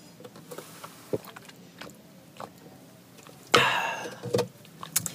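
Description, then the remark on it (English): A quiet stretch of small clicks and shuffles, then a short slurping sip of iced coffee with a rattly, airy edge, followed by a few soft mouth sounds and taps. No one talks. “But yeah, like, hold on, let me get a sip of this iced coffee.”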